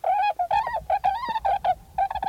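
A flock of swans calls in a steady run of bugling, honking notes, short calls overlapping in quick, uneven bursts, fairly loud, with no voices.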